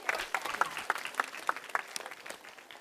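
A small group claps steadily for a few seconds as a round of applause, with quick, slightly uneven hand claps at moderate volume.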